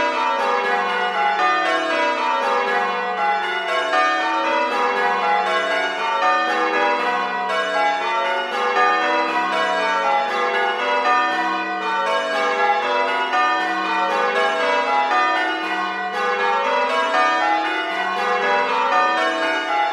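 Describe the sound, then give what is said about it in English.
A peal of church bells at Cromer, Norfolk, rings continuously, overlapping tones tumbling in a steady cascading rhythm, full and resonant with no voices present. “Finally, Chris's favourites, the Cromer bells.”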